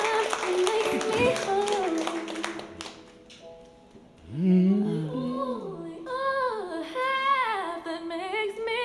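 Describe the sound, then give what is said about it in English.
A short burst of scattered clapping from a small audience fills the first few seconds, loud, then fades as a voice takes over with expressive, sliding vocal sounds. “Everybody give another round of applause”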